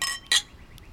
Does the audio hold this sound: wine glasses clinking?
yes